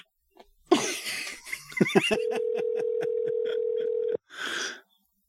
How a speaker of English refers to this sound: It's too many rings. He's not answering. Not looking good. He's not answering.